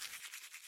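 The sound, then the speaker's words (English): Quick, rhythmic scrubbing of a toothbrush against teeth, a bright hissing swish repeating in several fast strokes with no voices. “Brush teeth.”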